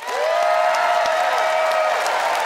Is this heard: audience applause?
yes